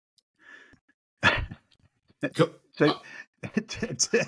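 A pet dog barks in the background several times in short, sharp bursts, a lone yap followed by a quick run of barks, moderately loud, with brief pauses between them.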